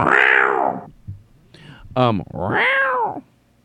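A cat gives two long, drawn-out meows, loud, while a deep-voiced man coaxes it, with a short, sharp vocal sound and a brief rustle in the pause between them.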